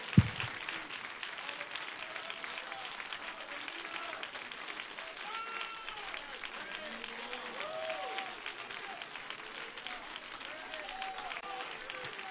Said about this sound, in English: And we'll clap and give you praise right now before we're seated. Unto the Lord.